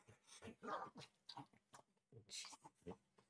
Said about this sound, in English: Sorry, Daisy is playing with other dogs and being loud as ever.